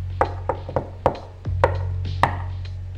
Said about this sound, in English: What about that enclosed booth over there? This one, with the ancient push door? You think we should knock? Certainly. Why not?